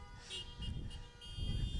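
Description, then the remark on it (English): Several car horns honk together in a full parking lot at the Vanceburg campus during a drive-in worship service, steady overlapping tones held over a low rumble of idling engines and crowd noise. “How about another good beep? Let them know you're here.”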